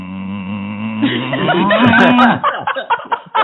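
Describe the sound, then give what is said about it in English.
A person imitates the groans of the character Lurch: a low, drawn-out groan, a sustained droning moan for about two seconds that rises into a strained, wavering cry, followed by short breathy vocal bursts. “So I guess for Lurch, if he's faking an orgasm, it's kind of the groans he does, like, okay?”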